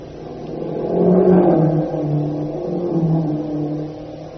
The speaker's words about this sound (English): Wait, let those cars pass. Only the Japs have motor cars here. He's right, Unc. Hey, they're Jap staff cars, all right. Hurrying toward the west gate of the town.